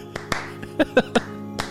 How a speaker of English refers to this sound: We need a slow clap on this one. There it is.